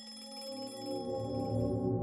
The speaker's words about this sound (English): not before reaching out and pressing that electric bell for help. And so the others woke up at the sound of the ringing,